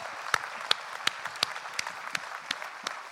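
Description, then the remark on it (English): A crowd claps steadily for well-behaved children after a Christmas story, with sharp individual claps popping out at a regular rhythm over dense, fairly soft applause; no one speaks. “Let's give a round of applause for the kids for being so well behaved.”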